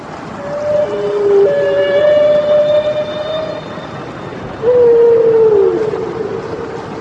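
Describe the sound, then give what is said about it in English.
Humpback whale song with long, sustained tonal moans and higher harmonic whistles, one drawn-out call sliding downward near the end, all over a steady underwater hiss with no talking. “The Humpback Whale.”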